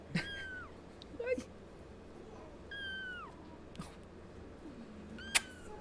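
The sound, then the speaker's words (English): A cat that is being held and trying to jump out of someone's hands meows several times, with drawn-out, falling cries separated by short pauses, over a steady low background noise. The meows are fairly quiet. “It's very common in Jeddah to call cats sheikha.”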